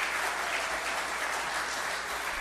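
Steady applause from an audience, a dense wash of many hands clapping at once with no distinct individual claps, holding at an even level throughout without any speech.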